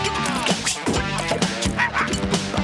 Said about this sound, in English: Okay, so now Doug, Porkchop barked, and then Biscuit barked over in... That was funny.